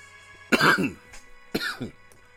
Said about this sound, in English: Excuse the coughing, you know, Blunt's hitting me a little different.